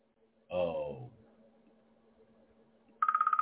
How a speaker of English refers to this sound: Now, who would be calling me while I'm on the phone? While I'm doing my show. I don't know. It's not a number I'm familiar with.